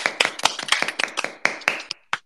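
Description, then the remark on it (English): A short burst of applause from participants unmuting their microphones on an online call to welcome a speaker: a dozen or so sharp, irregular hand claps in quick succession, fairly loud, thinning out toward the end with no voices. “So if anybody has a microphone right now, please feel free to unmute yourself and give a round of applause, a warm welcome”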